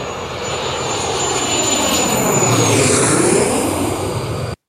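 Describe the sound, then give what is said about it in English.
An ACB Learjet taking off in 34-degree rainy weather: a loud, steady jet roar with a thin high whine, swelling slightly over a few seconds before cutting off abruptly. No voices are heard. “Well, it's the ACB, Learjet that we have, And I believe we have arrived at Dulles Airport.”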